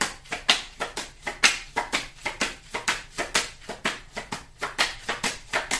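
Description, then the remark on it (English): Tarot cards being shuffled, a steady run of crisp, papery slaps and flicks, about three or four per second with a slightly uneven rhythm, fairly quiet and with no talking. “That came out during the pre-shuffle.”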